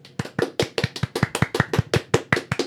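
Steady clapping, about five crisp, sharp claps per second, sounding like one or two people applauding a guest rather than a crowd, with no voices over it.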